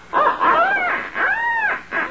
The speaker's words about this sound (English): I think I'll practice up with my duck call a little.